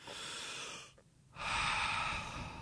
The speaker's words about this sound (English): You should make the time to relax. Take a deep breath.